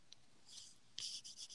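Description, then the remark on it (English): Soft scratchy rubbing, a brief scrape followed by a brushing swell, then a louder stretch of rough shuffling friction picked up by the mic, made by a person moving around a lot, with no one talking. “Who's shuffling? Who is shuffling?”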